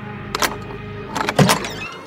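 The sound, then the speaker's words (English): A brass lion-head door knob rattles and turns with a couple of sharp clicks, then a door latch releases and the door creaks open with a low mechanical scrape. No one speaks. “The sobbing has all but subsided as you wrap your hand around the brass lion head to turn it.”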